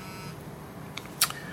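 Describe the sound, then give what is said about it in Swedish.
A phone's text message alert sounds for a message from the physiotherapist: a faint blip, then a short, bright, high-pitched electronic chirp over a low, steady background hum, with no one talking. “shit vad jag får sms här.”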